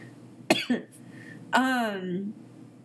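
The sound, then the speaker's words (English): A person coughs, two quick sharp coughs followed by a longer, harsher cough that trails off into a low voiced rasp, over a faint background hum. “Stop that. Don't cough.”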